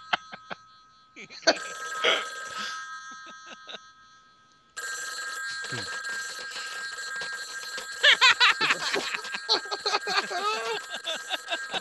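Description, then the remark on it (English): A telephone bell rings steadily and fairly loudly throughout for Kathleen Turner to answer, its bright metallic tone persisting as a burst of noise cuts in halfway and people talk over it toward the end. “For Kathleen Turner to answer the phone”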